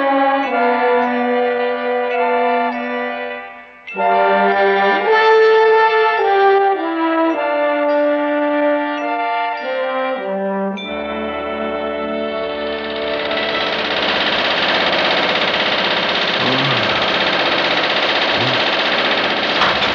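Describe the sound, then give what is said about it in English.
A riveting gun hammers in a loud, continuous mechanical rattle with a low droning undertone, starting about midway after a stretch of sustained musical tones. No one speaks. “About the riveting gun.”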